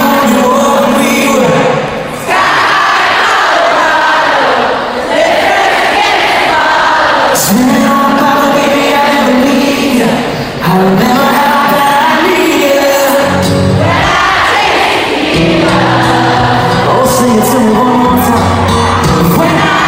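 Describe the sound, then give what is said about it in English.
A loud live concert crowd roars and whoops, voices singing along en masse over booming amplified music, with sharp shouts and surges of cheering throughout. “And the crowd was definitely ready to sing along with this song.”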